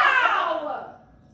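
A single drawn-out cat meow from a cat in the room, fairly loud, sliding downward in pitch and fading away over about a second. No one talks over it.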